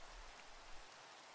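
Steady rain falls in a dense, even hiss spread across a wide range, with a faint low rumble underneath at first. No voices, just the constant patter throughout.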